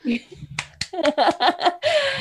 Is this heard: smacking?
no